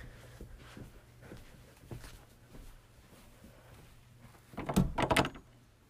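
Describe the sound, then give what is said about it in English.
Someone tries a locked door: a few soft clicks and taps, then a loud burst of rattling and jiggling of the handle and frame near the end. “I'm gonna check this other door again.”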